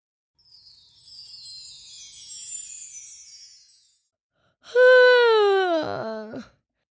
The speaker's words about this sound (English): Oh boy, I'm yawning. I feel so relaxed.